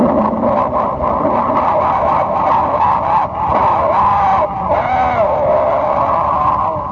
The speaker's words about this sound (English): And when they all start out at once, you see these guys run across the track, they jump into their seats, and you hear these cars all...